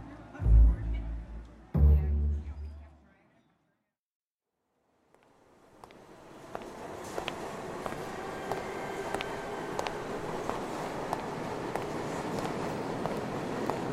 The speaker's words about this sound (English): Footsteps go down a long and surprisingly empty stairwell.